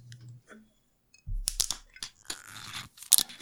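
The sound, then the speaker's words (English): A bottle of slightly dry sake (sake meter value +3) being opened: a low thump, then a run of crinkly, tearing crackles and sharp clicks as the seal and cap come loose, ending in a bright snap. No one speaks. “Let's get this open.”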